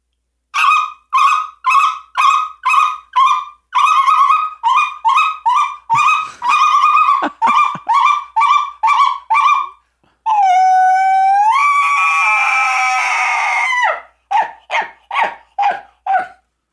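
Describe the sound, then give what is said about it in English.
Rapid, rhythmic bursts of high, yodeling speckle-belly goose notes, then a long rising, whistling elk bugle lasting several seconds, followed by more quick goose calls. All are imitated by a caller, with no talking. “All right, you want a speckled belly or you want an elk? I want a speckle belly and an elk.”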